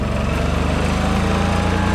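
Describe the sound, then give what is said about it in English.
A golf cart's small engine runs at a steady idle, a loud, low, buzzing drone with a regular throbbing pulse and no voices over it. “Ladies and gentlemen, listen to that sweet, sweet purr.”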